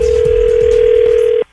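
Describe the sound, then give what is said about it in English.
A single long telephone ring tone, a steady electronic hum heard on the caller's end, sounds loudly for over a second and then cuts off abruptly into near silence. “she wants me to call and tell her that she needs to stop dressing trashy”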